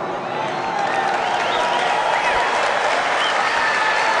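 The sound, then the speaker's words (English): A crowd at a Donald Trump rally cheers and applauds without pause after Trump speaks about the NRA resignations, a dense, steady roar of clapping hands with scattered shouting voices rising and falling through it, loud from start to finish. “What is there to cheer about?”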